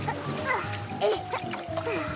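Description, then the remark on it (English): Water splashes and sloshes in a few quick bursts as water comes in after landing in the ocean, mixed with a busy background of voices and tonal sounds. “We're going to land in the ocean.”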